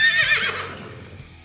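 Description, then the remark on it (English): A horse whinnies loudly, a single shrill, wavering neigh that starts strong and trails off with a fluttering descent over about a second and a half. “That's right, folks, it's horses!”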